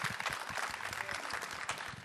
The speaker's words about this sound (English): Yeah, that's really good. I think that's really good. We can clap for that. Thank God for that.